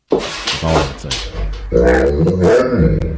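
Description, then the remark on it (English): A dog makes a string of drawn-out, rising and falling whines and grumbles that mimic the rhythm of human speech, fairly loud across a few seconds. “We just heard it happen. What do you need? I'm telling you, talking dogs”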